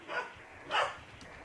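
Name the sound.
dogs barking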